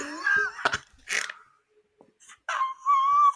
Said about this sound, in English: my dog is like blasting.